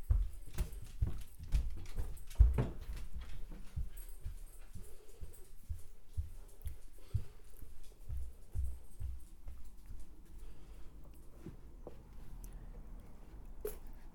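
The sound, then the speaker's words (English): A dog named Wolf moves around outdoors, its paws padding and scuffing in quick, irregular steps that thin out toward the end, with soft rustling underneath and no talking. “Come on, this way. Good dog.”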